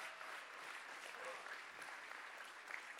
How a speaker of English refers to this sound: This is the day that the Lord has made. I will rejoice and be glad in it. Clap your hands right now. Come on.